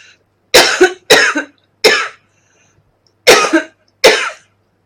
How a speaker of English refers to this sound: I'm just going to cough.